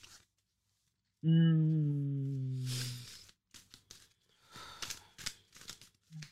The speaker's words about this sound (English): So I've got the Afro Goddess tarot deck here. I would be honored to shuffle it.